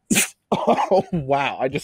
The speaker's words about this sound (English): Did I just sneeze?